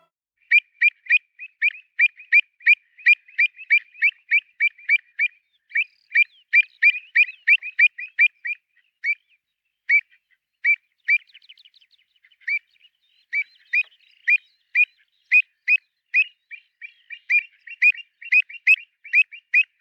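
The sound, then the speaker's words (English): An avocet, a black-and-white wading bird, calls repeatedly in rapid, clear, piping notes, sometimes in quick bursts and sometimes spaced out, loud against a quiet background with no voices; recorded in Scotland. “And so did you get that sound of an avocet recorded on a recent visit to Scotland?”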